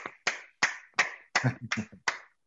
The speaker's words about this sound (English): Amen. Why don't you clap your hands as you take your seat?